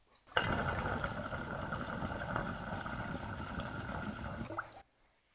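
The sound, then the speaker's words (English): Steady, churning water bubbling in a Honey Jar Recycler bong, a dense gurgle with a faint whistling tone on top, running evenly for about four seconds before cutting off abruptly. No one speaks. “So the Honey Jar Recycler has a slower drain.”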